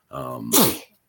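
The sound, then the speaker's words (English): A single loud sneeze: a voiced inhaling build-up followed by a sharp, breathy burst that fades quickly, with no other sounds around it. “Bless you.”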